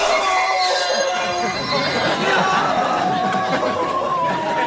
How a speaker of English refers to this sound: Which is just a series of screams, … falling to his knees and tearing his jumper open.